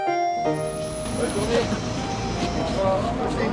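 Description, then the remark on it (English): Steady low rumble of a bus engine on a long ride into La Rochelle, France, with continuous road noise throughout, fairly loud, a few tonal whines on top and indistinct voices murmuring in the background. “That was an all right bus journey, but that was long.”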